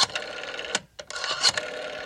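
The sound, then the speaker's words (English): A rotary phone dial whirs and clicks in quick mechanical bursts, briefly pausing before spinning back again. It sounds clear, with no voices. “Or maybe even rotary phones.”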